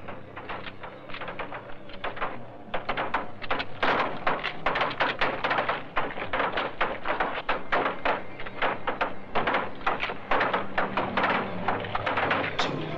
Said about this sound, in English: Zombies continue pounding on the door. There's not much to talk about in this minute. They're pounding on the front door.